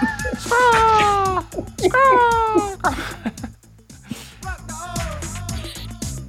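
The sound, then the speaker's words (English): Seagull calls ring out within a song: two long, loud, wailing cries with a slightly falling pitch, followed by a softer, shorter call, all over a steady low musical backing. “This was just seagull calls.”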